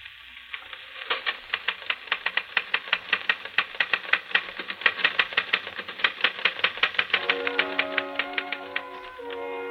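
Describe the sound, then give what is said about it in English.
Rapid, evenly paced typewriter keystrokes, played from a special record on a small portable phonograph with a repeating attachment in a hotel room, clatter nonstop for several seconds, crisp, with a sustained ringing tone joining the tapping near the end. “you're busy typing on a phonograph record.”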